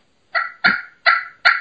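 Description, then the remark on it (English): Four short, raspy turkey purr notes played on a Primos Crystal slate call, each with a sharp start and quick fade, spaced evenly, with no talking. “I like a slate because you can purr on it.”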